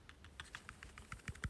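Rapid, evenly spaced clicks of buttons being pressed on a small LED light remote, about a dozen quick taps in a steady rhythm, quiet, with no voices.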